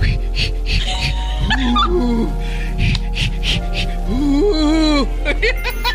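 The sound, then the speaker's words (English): A person demonstrates Lamaze-style breathing, with a rhythmic run of short breathy puffs mixed with whimpering, rising and falling vocal moans. “It's just, it's I just, will take the Lamaze breathing.”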